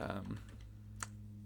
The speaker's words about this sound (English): still typing.